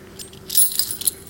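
A short, bright jingle of house keys shaken together, metallic clinks bunching into two quick bursts over about a second, with a faint steady hum underneath and no talking.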